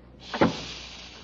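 A broom closet door swings shut with a single soft thump, followed by a steady faint hiss.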